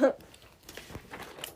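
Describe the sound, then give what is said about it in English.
Soft chewing on a sticky fruit chew candy: a few irregular, moist squishes and faint crinkly clicks over about a second and a half, after a brief vocal sound at the very start. “Okay, why is this fruit chew also suspicious? But at least these are like fruit chews, so.”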